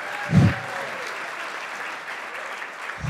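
audience applause

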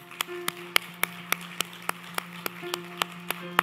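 audience applauding

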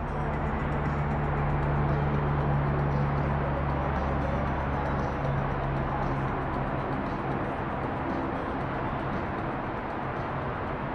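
police helicopter flying overhead

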